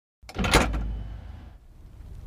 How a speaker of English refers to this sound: Then the front door of the submersible opened and a terrified man stumbled out.